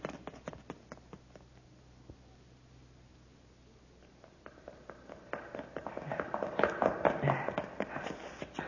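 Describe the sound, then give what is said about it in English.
Hurried footsteps clatter up a flight of stairs inside a building, a rapid uneven stream of hard taps that grows louder and busier toward the end, as if several people are climbing quickly. “Quick, open the door. Up the stairs.”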